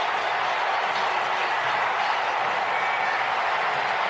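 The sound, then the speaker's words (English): A large NFL stadium crowd roars and cheers after Miami quarterback Ryan Fitzpatrick's go-ahead touchdown pass puts Miami ahead of New England 26-24 with 24 seconds left, a steady, loud wall of noise that holds without letup for the whole stretch, with scattered clapping mixed in and no one speaking over it. “And the crowd now knows it.”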